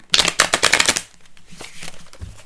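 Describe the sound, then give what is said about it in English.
A crisp riffle of a deck of cards being shuffled: a rapid, fluttering burst of papery clicks for about a second, then quieter shuffling and handling noises. “Whoa, my hand still hurts, so I'm having trouble with the shuffle.”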